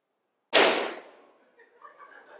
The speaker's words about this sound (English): Wait a second, guys. The exercise was you should not pop your balloon. Whoever has an unpopped balloon, why are you popping your balloon?